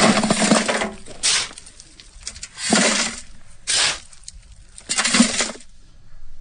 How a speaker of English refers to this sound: And when you live out in the country, you got to do some shoveling. This is shoveling gravel into a bucket. Fill those potholes.